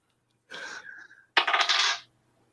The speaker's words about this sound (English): So it's going to be whatever you roll on a D6 plus 2. Plus 2? Okay. And look, I'm using my whatever the fuck it is dice from Easy Roller Dice Company.